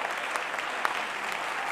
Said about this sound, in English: Can we clap our hands to Him?